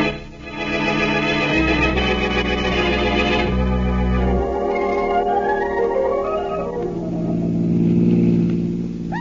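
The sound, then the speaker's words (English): A car engine runs steadily and loudly during an afternoon ride, its pitch rising and falling as it revs and shifts, with a deep rumbling drone and no voices. “Yes, in a car.”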